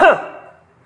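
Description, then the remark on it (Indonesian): A single short throat-clearing sound, a quick voiced burst at the start that fades away fast, leaving near silence behind it. “Padahal tidak dia batuk.”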